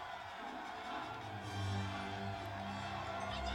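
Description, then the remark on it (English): A crowd cheering at a pod race in a film scene, a dense, continuous roar of many voices, fairly quiet overall, swelling slightly partway through and holding steady to the end. “Faster cheering. More intense. Yeah, the cheering is horrible.”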